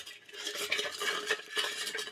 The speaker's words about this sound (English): So we mix up the ice and then we strain out the excess water.